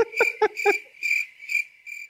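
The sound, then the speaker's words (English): Crickets chirp steadily outdoors in a shrill, pulsing trill that repeats in short bursts, with a few lower, throatier calls mixed in near the start. No one speaks. “That other one, I can hear actual crickets outside, and it made perfect.”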